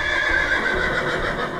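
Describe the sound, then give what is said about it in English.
A horse lets out a loud, sustained whinny, its shrill, wavering call filling the short moment, with faint hoof clatter underneath and no one talking. “I'm more worried about the horses at this point.”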